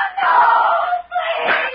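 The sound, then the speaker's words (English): At night, a woman held captive by her tormentors lets out a loud, sustained high-pitched scream, breaks off for a split second, then screams again, piercing with no other voices around. “Then, a scream in the night, and Johnny first learned that his wife is in the hands of his tormentors.”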